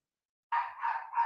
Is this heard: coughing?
no